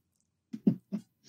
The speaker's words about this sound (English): Sorry, my cat just knocked something down.